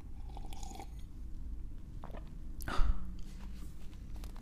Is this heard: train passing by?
no